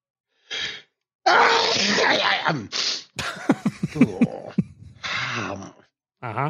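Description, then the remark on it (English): A loud run of sneezes: sharp explosive bursts with strained, voiced gasping breaths between them, then a final sneeze and a short inhale. “There's another one coming.”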